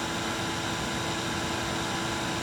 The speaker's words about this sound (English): Oh, I hate using the vacuum.